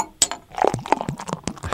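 Beer being poured into a glass: a sharp glassy clink, then a short run of bright clinks, taps and splashy clatter, brief and moderately loud, with no talking.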